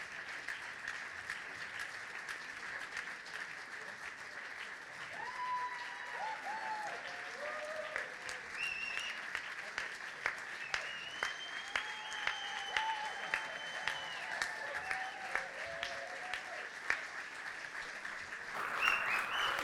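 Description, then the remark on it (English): Steady, dense applause from a crowd for everyone who has supported Riverside Performing Arts runs for the whole stretch, a continuous wash of many hands clapping at an even level, with a few faint voices and calls rising above it. “That is a huge applause to everybody that has supported these guys, from people that have hosted, from people that have discipled, from people that have supported financially, all sorts of ways.”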